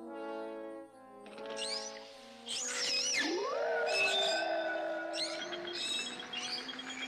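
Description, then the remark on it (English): Synthetic decoy whale call with a dolphin-like quality: sliding, squeaky whistles and tonal moans that rise and fall over a steady harmonic drone, loud, with no voices. “It sounds nothing like a whale. Okay, he's gone. I think that's a dolphin.”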